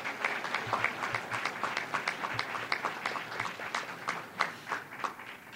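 A crowd applauds steadily, many hands clapping in a dense, crackling patter at moderate volume for several seconds, with a few sharper claps standing out and no one speaking.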